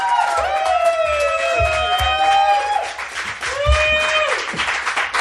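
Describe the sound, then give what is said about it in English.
A crowd applauds steadily while cheers and whoops rise above the clapping, with voices shouting over a dense, sustained wash of hand claps, welcoming a speaker to the stage. “Let's get a round of applause going and welcome Ken to the stage.”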